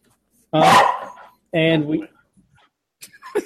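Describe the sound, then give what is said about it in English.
Two loud dog barks about a second apart, each a full harsh woof, followed by a couple of faint, short yips trailing off near the end. “My dog's TMX in the building.”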